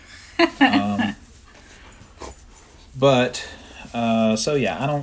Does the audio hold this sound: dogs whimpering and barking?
yes